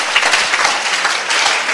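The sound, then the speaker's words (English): A crowd claps together for God during a sermon, in sustained, dense applause, a steady wash of many hands with no pauses and no voices rising above it. “Can you give God a clap in the chest?”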